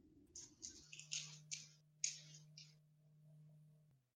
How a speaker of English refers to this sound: The roll. Roll them dice.